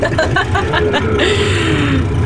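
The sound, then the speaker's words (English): A loud old truck engine runs steadily, a heavy low rumble with a rising whine and some clattering rattles, with no one speaking. “this is an old truck, so it's very loud and you know how it is.”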